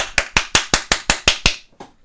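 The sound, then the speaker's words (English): A quick, even run of about eight sharp hand claps, made to sync recording tracks, loud and crisp, followed by a couple of softer trailing claps as the rhythm falls apart. No one speaks. “We clap to sync things up now because I'm too lazy to do three-track editing.”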